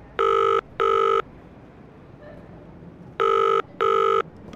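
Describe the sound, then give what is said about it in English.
A telephone ringback tone as a call is placed to an organization's head of public relations, sounding in two double-pulse rings, each pair of short buzzing tones separated by a pause, clear and steady over a faint background hiss with no one speaking. “Between meetings, he puts in a phone call to the organization's head of public relations.”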